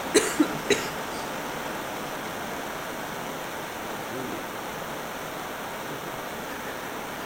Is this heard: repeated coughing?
yes